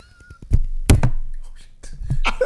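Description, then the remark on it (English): A microphone gets knocked over: a loud thud with a short clatter, followed by scraping and handling noises and some faint vocal sounds. “That was me knocking over the microphone there, guys.”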